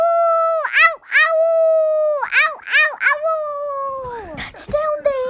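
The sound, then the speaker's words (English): A voice imitates wolves howling, with long wavering awoo calls that rise and dip repeatedly, fairly loud, ending in a falling, breaking howl. “And wolves.”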